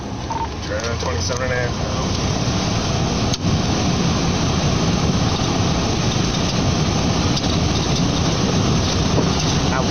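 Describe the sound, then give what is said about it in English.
Loud, steady road noise from a police car driving at high speed with lights and sirens on: a continuous rumbling hiss with no breaks. A faint voice briefly surfaces near the start. “You hear all the road noise.”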